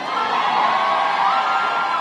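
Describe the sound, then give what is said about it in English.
A gymnasium packed with supporters in San Francisco screams and cheers continuously as the new mayor, London Breed, walks out, a dense, loud roar of many voices with high-pitched shouts and whoops, echoing. “When, in a gymnasium packed with screaming supporters, out walked the new mayor of San Francisco.”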